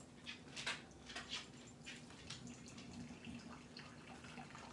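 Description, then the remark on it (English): About 10 ounces of water is poured slowly into a coffee filter, a soft, continuous trickling splash with a few brighter gurgles early on, fairly quiet, with no voices. “so I want to pour it slow because this filter is not, yeah, for sure.”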